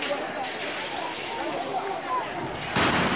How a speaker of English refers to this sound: That sound you just heard was the sound of a tear gas fired by a police officer in an attempt to thwart this unruly demonstration.